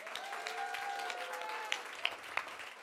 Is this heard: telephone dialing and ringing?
no